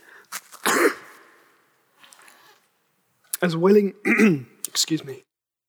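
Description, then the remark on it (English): A man coughs a few times with sharp, noisy bursts, then clears his throat with voiced, rasping grunts in a quick series of efforts. “As willing as we are, how willing I have been for my cough not to be a problem.”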